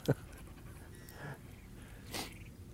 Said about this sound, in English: Okay. Oh, yeah, it was a dog. Come here, it's okay. He's just like you. He's just trying to look for a place to poo.